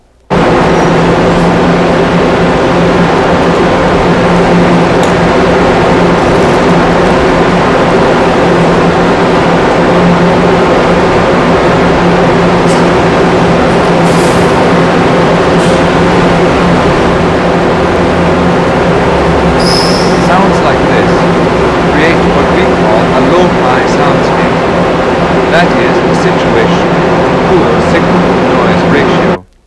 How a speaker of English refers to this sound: Here is the exhaust from Eaton's department store, built in 1973, as it blows out over pedestrians at a bus stop outside the store.